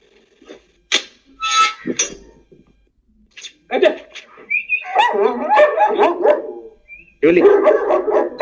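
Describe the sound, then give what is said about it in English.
An adult Gull Dong dog named Julie, who lives here 24/7, barks in a few sharp, loud bursts, then breaks into high, wavering whines and whimpers mixed with yelps that continue in long strained stretches. “This is adult Gull Dong Julie.”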